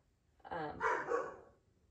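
Dogs bark a few times in quick succession, moderately loud, with short harmonic yelps rising and falling over about a second.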